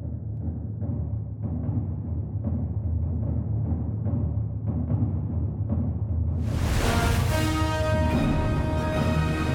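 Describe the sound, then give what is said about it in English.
In the opening of Tom Hooper's film, as the view rises to the water's surface, steady, evenly spaced drum beats pound over a low, rumbling orchestral bed, then a loud blast of full orchestra with bright brass surges in near the end, with no voices. “And as we rise to the surface, oh, it's the drums. You can hear the drums.”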